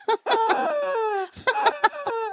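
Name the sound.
chicken clucking sound effect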